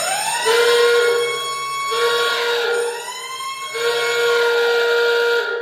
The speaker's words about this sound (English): If you listened to our last episode, you'll recognize that as the newly introduced paranoid strain justified conspiracy alarm. As with last episode's usage, this is a minor concession.